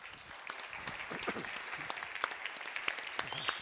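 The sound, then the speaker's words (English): A crowd applauds the singers steadily, many hands clapping in a dense, continuous patter with sharper individual claps popping out, while faint voices murmur underneath. “I'm clapping for you.”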